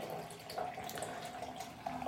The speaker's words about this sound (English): You want to have about 50 mil over it. And then we want to pour the rest of the 500 mils over that 30 grams of coffee.